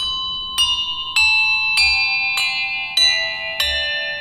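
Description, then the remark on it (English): A series of handbells, threaded on a very long church broom balanced on two chairs and played by one person, rung one after another in a steady peal, each clear metallic strike ringing on and overlapping the next, about seven strikes in an even rhythm, fairly loud. “And that is what you would call a peal.”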